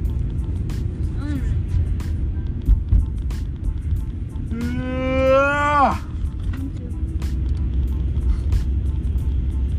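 Steady low engine and road rumble from inside a car moving in heavy traffic, with a brief droning, horn-like tone rising over it for about a second midway through.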